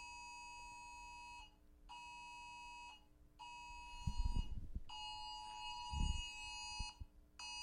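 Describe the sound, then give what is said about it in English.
A phone's emergency broadcast test alert blares a loud, steady electronic tone in long pulses with brief gaps, accompanied by a few dull low thumps partway through. “Why is there a test of the... a test of the... emergency broadcast system.”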